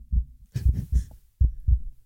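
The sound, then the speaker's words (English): A steady heartbeat thumps in low, muffled pulses, the paired lub-dub beats repeating in an even rhythm, fairly loud with no voices. “That's my little heartbeat.”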